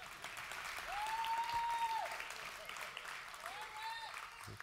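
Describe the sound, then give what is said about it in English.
A church audience claps after a prayer in a loose, half-hearted wash of applause that never builds, with a thin sustained whistle-like tone rising above it twice. “That was a half-hearted clap.”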